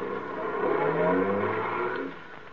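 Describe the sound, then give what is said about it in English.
A taxi cab's engine revs and pulls away, its steady rising hum of acceleration filling a couple of seconds before easing off, moderately loud with no voices; the cab is bound for 312 Main Street. “Taxi. Hey, taxi.”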